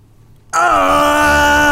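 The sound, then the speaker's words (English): After a moment of quiet, a man suddenly lets out a loud, sustained scream, a strained, tonal cry that dips slightly and then holds steady at a fairly low pitch. “And it sounds like a man screaming.”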